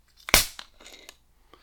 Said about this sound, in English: The cracking of the Field Day bottle always sounds like a sideways fart to me.